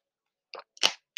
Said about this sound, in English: And I'm finna drink me some water.